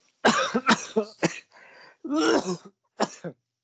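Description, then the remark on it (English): A series of sharp coughs and throat-clearing bursts, about five or six in irregular succession, with brief pauses between them and no talking. “I cough because I agree.”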